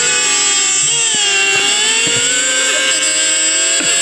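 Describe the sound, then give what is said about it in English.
A video made by Fox of race cars going around a racetrack with a buzzy, kazoo-like tone, several nasal whines overlapping and swooping up and down in pitch, loud and continuous throughout with no talking. “I just thought that was hilarious that they made a video of the race cars sounding like that going around the racetrack.”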